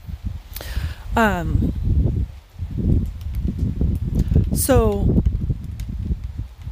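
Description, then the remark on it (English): Gusty wind buffets a microphone with loud, low rumbling bursts that continue throughout, while a person speaks briefly and two high, sliding calls ring out over the roar. “It's super windy out here, so I hope it's not too windy in my mic.”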